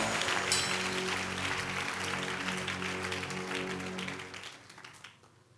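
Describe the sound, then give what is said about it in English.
A crowd claps steadily and loudly for about five seconds, giving a clap for the Lord during a sermon, a dense rattling applause over sustained keyboard or organ chords, then fades out quickly at the end. “Come on, give the Lord a mighty clap.”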